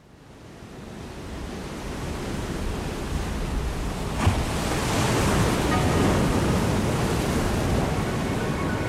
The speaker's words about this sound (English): Quadrophenia opens with the sound of the ocean, waves crashing on the shore.